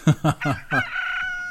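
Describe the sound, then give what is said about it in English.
A person mimics a rooster's crow: four short, rhythmic voiced bursts followed by a drawn-out, high-pitched held note, loud with no other talking. “Chicken”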